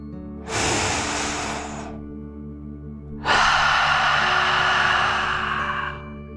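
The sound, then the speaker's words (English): A slow, deep "dragon breath" drawn in with a soft airy rush, a brief pause, then a longer, slightly louder breathy exhale, with no talking. “let's take another deep dragon breath. Here we go. Deep breath in and out.”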